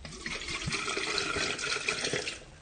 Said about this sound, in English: Now I'm going to empty some water out.